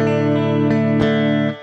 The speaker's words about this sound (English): let me give you an example first of a spring reverb